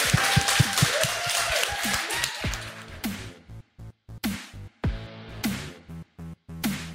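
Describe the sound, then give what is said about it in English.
An audience at a Wollongong Writers Festival session breaks into applause for three writers, a dense burst of many hands clapping for about three seconds, then it thins out and gives way to sparser, tonal sounds with brief silent gaps. “Big round of applause.”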